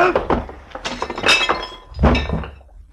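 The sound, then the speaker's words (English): A heavy crash as a man, punched in a fistfight, smashes onto his coffee table, with breaking glass and clinking shards in two loud bursts, then a brief tinkle of debris settling. No voices. “sprawled all over his coffee table, as limp as a 5-cent salad.”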